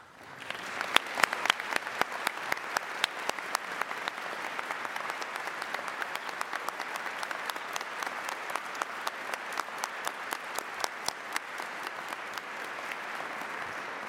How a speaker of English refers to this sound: I invite them to stand, and I invite us to recognize them with applause.